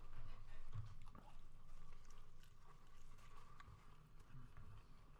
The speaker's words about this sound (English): Sorry, guys, I'm trying not to chew on the microphone. The microphone is above my plate. I can't help it.